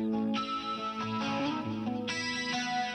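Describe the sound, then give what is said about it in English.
Electric guitar ringing out bright harmonics drenched in effects, with shimmering chorus and distortion, sustained tones layered densely and a fresh bright chord entering partway through. No one speaks. “Harmonics, listen.”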